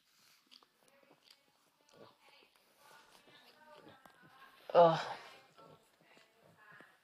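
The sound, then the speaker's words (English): Wet slurping and licking noises from a pet named Lily licking a person's arm, irregular and smacking, with soft sniffs and one louder, breathy burst partway through. “If you can hear this like slurping sound, she's completely taken over my arm.”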